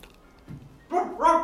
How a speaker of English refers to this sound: What? Oh, he's barking.